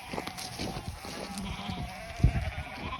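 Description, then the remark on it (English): Sheep on a hillside farm bleat repeatedly outdoors, several wavering calls overlapping, with a steady background of wind and open-air ambience. “So when you have hills like this, you can't really do the cattle as well, but sheep are actually really, really good, and you can't farm on it.”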